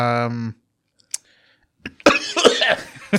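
Loud coughing right into the microphone, a rough burst of several harsh coughs near the end, preceded by a short voiced hum and a couple of faint clicks.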